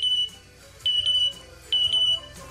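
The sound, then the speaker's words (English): A bird named Jazz mimics a smoke detector, giving shrill, high electronic beeps, each a quick double chirp, repeating about four times at an even, steady pace, loud with no talking. “He copied the sound of a smoke detector.”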